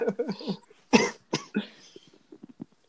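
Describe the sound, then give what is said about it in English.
Several harsh coughs burst out in quick succession, with a strong fit near the middle, followed by softer throaty sounds and faint breathy murmurs trailing off. “I'm coughing like a mofo.”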